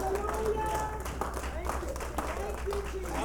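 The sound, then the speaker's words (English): A church audience claps their hands to God in a dense, sustained burst of applause, loud and continuous throughout, with voices calling out and singing over the clapping. “In the name of Jesus, clap your hands one more time to your God.”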